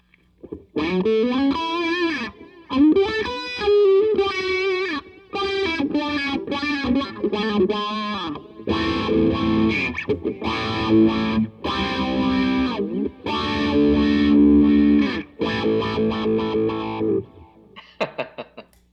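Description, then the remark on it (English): An electric guitar played through the fourth of several wah pedals being compared: sweeping, vocal-like tones on a lead phrase, then louder distorted chords and riffs that wah up and down before a short final stab. “Which is the Best Wah Pedal?”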